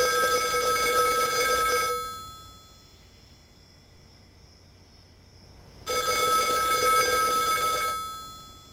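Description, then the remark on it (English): A payphone in a campus phone booth in an empty high school parking lot rings twice, each loud, jangling bell burst lasting about two seconds with a long silent pause between, with no voices. “He hangs up and walks to the edge of the curb, looking down the long stretch of road in front of the school, spotting a news van in the distance, when the phone rings.”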